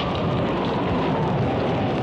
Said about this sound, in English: Once I turned it around for him, we headed south, and about 40 miles north of Tahiti, we encountered a violent storm.